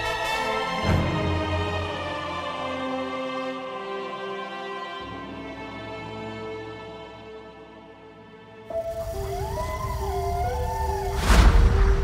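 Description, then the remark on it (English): Dark, droning music builds slowly, then a wavering, eerie monster howl rises and falls over a rumbling backdrop near the end, with no talking. “Darkness meets us as we hear the wild howls of monsters.”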